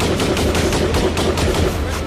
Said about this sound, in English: Hey! Bang, bang, bang, bang. Let that shit off, baby.